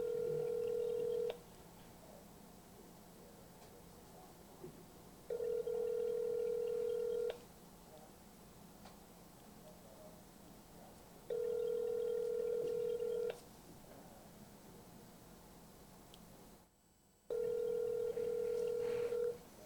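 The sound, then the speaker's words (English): A phone line rings out with a steady electronic ringback tone, four long two-second bursts separated by quiet gaps of about four seconds, clear with faint line hiss between. “All right, let me try the old lady again. Let me see if she can answer.”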